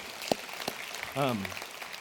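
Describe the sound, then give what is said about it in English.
A church audience claps together, a steady wash of applause filling the room, with a brief voice rising above it partway through, applauding the announcement that they gave over $85,000 to the Christmas offering. “You can clap for that.”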